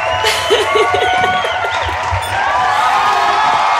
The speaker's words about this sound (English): Crowd's going wild.